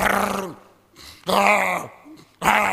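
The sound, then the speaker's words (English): A man's voice imitates loud snoring with three rough, groaning bursts, each a drawn-out rasping snort separated by brief pauses, forceful. “Some of you, the time that we should be praying are the times you are snoring.”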